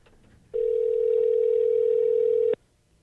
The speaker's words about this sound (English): All right, well, let me dial.